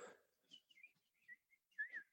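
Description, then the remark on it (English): Soft, high-pitched birdsong from a phone wake-up alarm: a series of short chirping notes and trills with brief gaps, quiet and heard on its own without any talking. “You can hear them. They're very quiet, but I'm like, oh, birds.”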